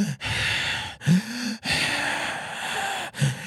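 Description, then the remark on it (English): A voice imitates the heavy, slow breathing of a man lying on his deathbed: four long, broad airy breaths with brief pauses between, fairly loud, some with a low voiced rasp at the start. “His breathing's getting a little heavy, getting a little slow.”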